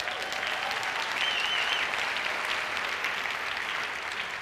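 Sustained applause from an audience, a dense, steady wash of many hands clapping at an even loudness throughout, with no voices standing out above it.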